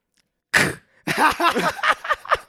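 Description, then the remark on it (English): A sudden, loud steel chair shot: one sharp metallic crack with a brief ringing tone, followed by a couple of seconds of loud, wavering vocal shouting. “Make your best impression of a steel chair shot out of nowhere.”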